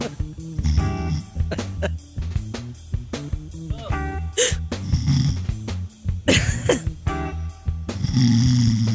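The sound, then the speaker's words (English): A person mimics another person's loud snoring with a run of harsh, rattling throat snorts and wheezy breaths, in rapid irregular bursts for several seconds. “That's literally what you sound like when you snore.”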